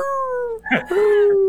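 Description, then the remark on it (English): A person imitates a whale call, as a Cylon talking like a whale, with long, tonal, wavering moans. The first slides slowly downward, then a short breathy break leads into a second sustained cry that rises and holds steady. “They just talk like a whale. How would that sound,”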